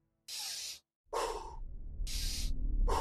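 Several deep, airy breaths in and out as part of a breathing exercise, each a broad hissing rush lasting about half a second, with a low rumble building underneath toward the end.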